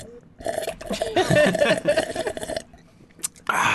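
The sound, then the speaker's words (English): A loud, drawn-out slurp of hot Earl Grey tea from a Star Trek mug, airy and gurgling for about two seconds, followed by a brief pause and a short final sip-like burst. “That's slurping sounds is also excellent radio. Here, let me show you.”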